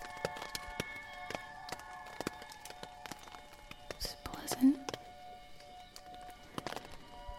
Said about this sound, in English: It's raining, as you can probably hear.